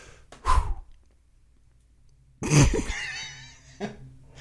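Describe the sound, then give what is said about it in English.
A single loud, explosive sneeze bursts out after a brief sharp intake of breath, trailing off into a breathy, wheezy exhale. No one speaks. “God bless you.”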